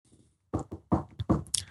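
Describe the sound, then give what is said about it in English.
A quick series of five or six sharp finger taps on a hard surface, like a knock on wood, in a slightly uneven rhythm after a brief quiet moment, with no one speaking. “That was me tapping on. Sound like someone was. Yeah, that's just me tap. That's the old finger tap”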